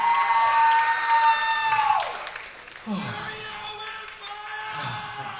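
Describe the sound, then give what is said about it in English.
An audience cheers and applauds itself loudly at a show, with bright whoops and shouts over a steady wash of clapping that eases slightly toward the end while voices carry on. “Give yourselves a big hand one more time.”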